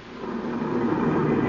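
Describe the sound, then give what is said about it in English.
A police car pulls into a driveway, its engine a steady, low rumble that swells slightly louder over a second and a half, with no voices over it. “That's the police car, Ralph.”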